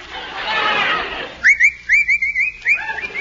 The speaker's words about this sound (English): What's the matter with you? What are you whistling for? Nothing. Can't a fellow whistle?